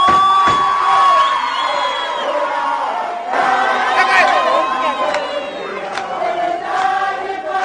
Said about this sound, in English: The EFF was in full force outside the court. A large crowd picketed outside the court carrying banners and singing throughout the day.